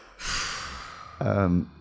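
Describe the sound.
A long, breathy sniffle drawn in, followed by a brief shaky voiced sound, as someone gets the sniffles out and regains composure after crying.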